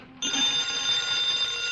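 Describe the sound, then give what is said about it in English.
A telephone rings, its bell bursting in after a brief pause and holding a loud, steady, high-pitched metallic trill right to the end, with no voices. “Answer the phone.”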